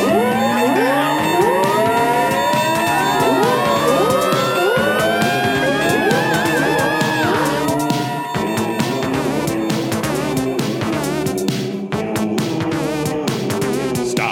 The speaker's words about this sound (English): And then literally the party siren goes off.